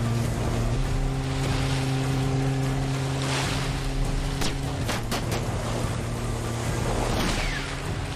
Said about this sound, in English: Yeah, there's a boat chase. Okay, there's a boat chase. He's trying to kill a guy, but the guy catches him trying to kill him, so he has to chase him on the boat.